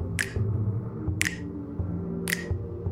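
Three crisp finger snaps ring out at an even pace, roughly a second apart, each a sharp bright click over a low, steady tonal hum in the background.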